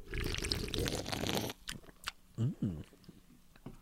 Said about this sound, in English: Oh, that fizz right there, that pop. Ooh, gotta get a sip of it though. Gotta get a good sip. I'm drinking.